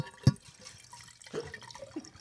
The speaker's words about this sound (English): There we go. Now, gratuitous wine pour number one. That's right. And we will have many more. And I even got the crystal in there, so.